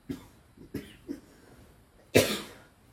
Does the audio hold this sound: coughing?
yes